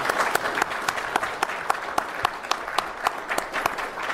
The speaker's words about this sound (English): That's going to be it for this session. With your applause, will you please thank our panelists today?